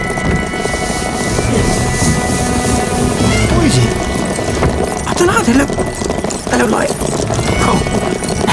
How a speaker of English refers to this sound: Wow, crikey! There's horses on the road. It's a new forest. There's always horses on the road. Or cows. Wild horses, yeah, but these are called riders. Like a dozen of them, just when we're getting closer, don't we?